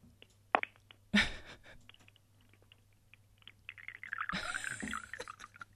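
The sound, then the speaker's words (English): Two sharp ceramic clinks, then a quiet pause before tea splashes and trickles into a cup for about a second and a half, over a low steady hum. “Did you hear the pouring?”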